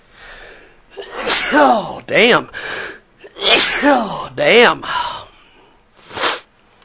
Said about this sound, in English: Oh, damn. Sneezing on the air. That's always good.